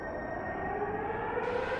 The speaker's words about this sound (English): Air horns. Emergency sirens.